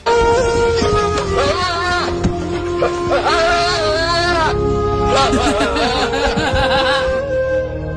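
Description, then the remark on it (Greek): Loud, wavering bleats repeat one after another from a goat in Saudi Arabia crying out at the moment it is separated from its owner, with quivering, sobbing cries that rise and fall over a steady background. “Ακούστε την κατσίκα πώς κάνει τη στιγμή του αποχωρισμού από τον ιδιοκτήτη της.”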